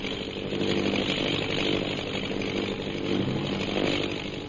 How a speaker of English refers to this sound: Say, that plane's coming down.